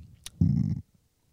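A single loud, low, rumbling burp about half a second long, right up close to the microphone, after a brief click, then silence.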